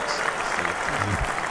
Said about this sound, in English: Oh, you got applause. Oh, nice. Wow.